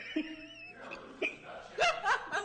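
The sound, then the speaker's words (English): Several short, abrupt hiccups from someone who has just eaten a hot pepper pop up at irregular intervals, fairly quiet, mixed with soft snickering laughter and a faint background hum. “I got the hiccup too.”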